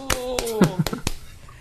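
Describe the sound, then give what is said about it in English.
A handful of sharp hand claps welcoming a guest, in a quick, slightly uneven rhythm, about five in all, with a brief voice cheering beneath them in the middle. “Howdy, I'm going to clap you on.”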